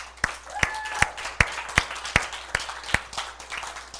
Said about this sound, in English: Give the musicians a big hand clap. They're awesome.